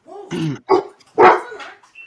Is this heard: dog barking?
yes